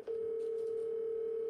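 A steady, unbroken telephone tone hums at an even pitch for the whole moment, like a call connecting and ringing out, with no voices over it, as a phone call is placed to a friend.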